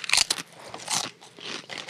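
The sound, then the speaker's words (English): Crisp, crackly crunching of a fried chip flavored like fried green tomato with remoulade sauce being bitten and chewed, with a sharp burst at the start followed by a few more uneven crunches, no voices. “What is a good chip.”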